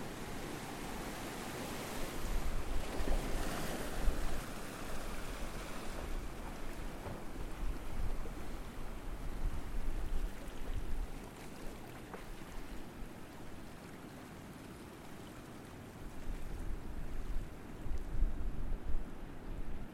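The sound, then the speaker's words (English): Waves boom steadily out at sea in the distance while water laps and splashes over rocks in gentle, irregular surges. The sound is continuous and moderately loud, with no voices. “So you have the distant boom of the waves out in the sea, and then you hear water just lapping over the rocks.”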